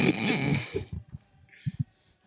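A person snores close by: one long, harsh rasping inhale, followed by a few short, low snorting grunts that trail off into quiet breathing.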